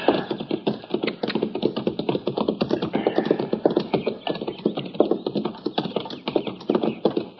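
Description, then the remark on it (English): Many horses clip-clopping along in a dense, continuous, steady patter of hoofbeats, with a whinny rising out of the trampling now and then. No one speaks. “Now, that's horses down there, Chester.”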